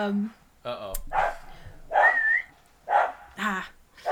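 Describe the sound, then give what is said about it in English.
A female dog lets out a string of about five yowling, whiny barks at a cat through a window, in uneven bursts, fairly loud, with short pauses between each vocal outburst. “Oh my god, she's talking to the cat through the window.”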